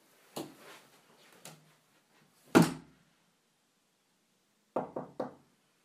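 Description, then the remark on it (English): An office door shuts with a solid thud after some softer handling clunks, followed a moment later by three quick knocks in a row. No one speaks. “So I'm just going to head out there, close the door, and nothing's going to happen.”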